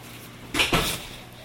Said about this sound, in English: could you close that door, please